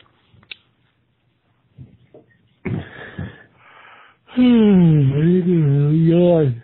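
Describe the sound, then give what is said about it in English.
A voice imitates sleepy snoring with sniffles during a nap: a few faint clicks, two raspy snorting sniffs, then a long, loud, wavering vocal snore. “He's having a sleepy nap. Sleepy nap time. With sniffles.”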